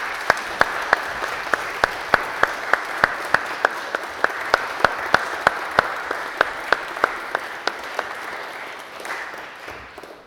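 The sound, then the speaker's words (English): An audience claps steadily for young people, a dense wash of applause with sharper individual claps standing out in a fairly regular rhythm, fading slightly at the end. “I think we should give these young people a round of applause.”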